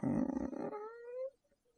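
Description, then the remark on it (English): A single low, groaning creak of a black raven-shaped weather vane shifting slightly with a very mild breeze, rough and grinding at first, then thinning into a rising, whining tone before cutting off into quiet. No one speaks. “There is a weather vane on the top of it in the shape of a black raven that is moving just ever so slightly in the very mild breeze that is sweeping through here.”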